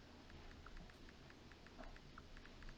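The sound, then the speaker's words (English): Soft, quick taps of someone typing a text message to his girlfriend on a phone, a steady run of light clicks, faint, over a low background rumble. “Who are you typing to”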